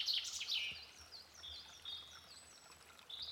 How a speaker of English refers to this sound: Pigeons, blackbirds, all sorts going on.